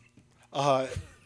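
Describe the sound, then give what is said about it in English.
A single cat meow, short and bright with a slightly rising then falling pitch, fairly loud, over a faint low hum with a soft thump just after. “sorry, the cat's meowing.”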